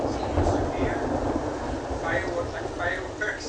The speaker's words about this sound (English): As you can tell, it sounds like fireworks almost. The thunder.